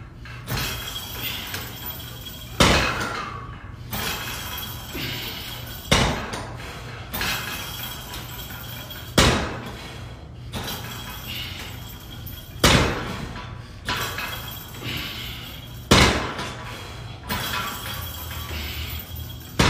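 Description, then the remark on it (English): Gym weights clang and bang during a workout with no music, in repeated sharp metallic impacts, roughly every couple of seconds, some louder than others, over a steady low hum and faint background noise with no talking. “Is listen to the sounds of the metal clanging and banging.”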